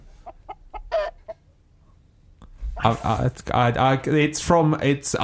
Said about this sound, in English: So these chicken sound effects are underneath one of our things, but I can't remember which one.